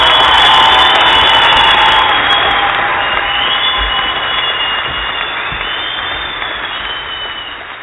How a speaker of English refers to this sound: So let's give Peter an applause.